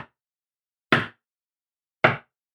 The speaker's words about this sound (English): But then, a couple nights later, his son was awakened by a knock at the door.